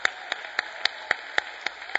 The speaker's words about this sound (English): But they doing good. Come on, give our media department a big hand clap.